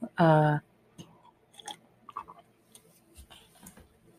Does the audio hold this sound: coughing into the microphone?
no